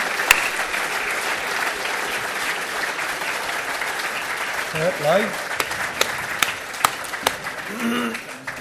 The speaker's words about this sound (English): Okay, two, come onto the stage, please. Round of applause for the last two people. Get yourself onto the stage. Come on. Come on.